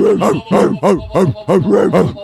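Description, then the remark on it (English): A person imitates a German Shepherd barking, letting out about seven deep, rapid woofs in a steady rhythm, loud with no other talking. “German Shepherd.”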